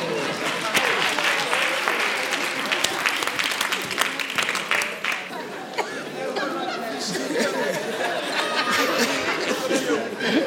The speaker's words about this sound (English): Oh, I thought I would hear someone clapping.